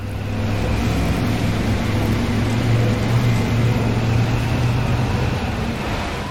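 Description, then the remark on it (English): A steady, droning engine rumble with a constant low hum and road noise of a truck cruising down a highway at speed, continuous with no voices. “Alright, we're driving in the truck.”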